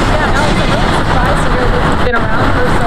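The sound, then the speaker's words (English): A dense, steady roar of passing car traffic fills the whole stretch, loud and unbroken, with an indistinct murmur of voices mixed into the noise. “God, car noise much?”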